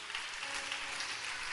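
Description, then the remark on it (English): Steady clapping from a crowd, a dense, even patter of many hands that holds at a constant level for the whole moment, with no voices standing out. “What are you clapping for?”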